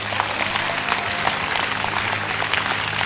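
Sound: audience clapping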